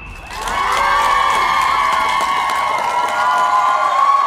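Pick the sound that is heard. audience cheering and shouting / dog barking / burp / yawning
audience cheering and shouting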